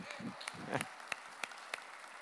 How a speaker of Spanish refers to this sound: Démosle un aplauso al pastor Elías.